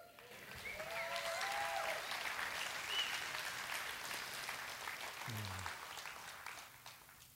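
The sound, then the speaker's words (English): A crowd breaks into steady applause, many hands clapping at once in a dense, sustained patter that holds for several seconds before tapering off, with no voices speaking over it. “That clap was probably because, see, that's true.”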